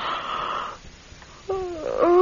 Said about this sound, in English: Oh, I can't stop yawning.